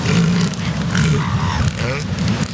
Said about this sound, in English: And oddly, elephant seal mating sounds like an engine starting up, you know?